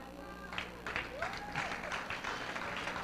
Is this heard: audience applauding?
yes